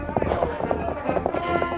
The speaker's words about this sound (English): Taking advantage of the stampeding herd of horses, Lou Cross, who had still been in the saddle, galloped his horse along with the first of the herd to go through the pass. Then, breaking away, he headed down along the trail.